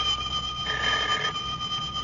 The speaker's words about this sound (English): a feller can't sit down for 5 minutes without that dad-blamed telephone ringing. If I had my way about it, we'd just have the thing took out.